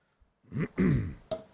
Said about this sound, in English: Was that loud? Was it loud? Was my cough loud?